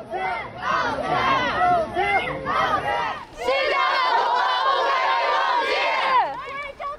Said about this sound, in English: So on that evening, protesters gathered in Wulubuchi Road in Shanghai, and it quickly evolved into a protest where at first people were asking for the leader to apologize.